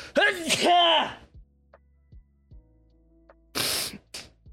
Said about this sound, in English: hold on, I'm about to sneeze, huh?